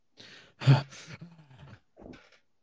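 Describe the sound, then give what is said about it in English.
A player in a tabletop role-playing game lets out a gruff, growling roar into a character's ear, a loud raspy vocal burst that rumbles on for a moment before a shorter, quieter growl trails off. “I roar in his ear and I'm just like, you're about to join me in the land of the dead, lad.”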